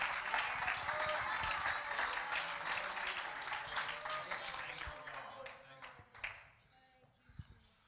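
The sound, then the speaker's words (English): A church audience claps their hands to the Lord and cheers with scattered voices for several seconds, the dense applause tapering off near the end into a few last claps and quieter murmurs. “If you're thankful for that, why don't you clap your hands to the Lord and shout with a voice of triumph?”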